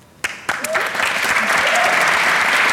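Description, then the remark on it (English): A live audience bursts into applause, starting with a few sharp claps and quickly swelling into a dense, steady wash of clapping from many hands, loud and sustained. “Oh, round of applause.”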